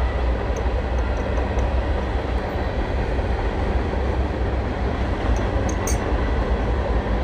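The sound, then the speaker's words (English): A train rumbles past next to a home, a loud, steady roar of heavy wheels on rails filling the whole stretch, with faint metallic squeals flickering high above the low drone. “like, damn, I live next to a train.”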